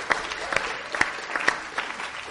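The Harbor City church audience applauds its new deacons steadily, a dense wash of clapping with a few sharper, louder individual claps popping out at roughly half-second intervals throughout.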